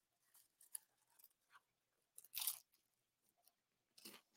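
Someone munches on popcorn, producing a series of irregular crunchy bites and chewing sounds, with a couple of louder, sharper crunches standing out among softer ones. No one speaks.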